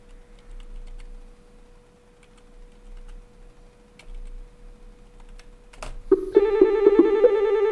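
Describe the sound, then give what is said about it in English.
A telephone starts ringing loudly with an incoming call after several seconds of quiet ticking and a low steady hum, its bright electronic ring tone sustaining to the end with no one talking. “I'm ready to call him, and he calls me.”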